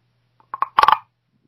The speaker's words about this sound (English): You didn't drop anything there. You, like, scraped, like, one of those frogs that are an instrument.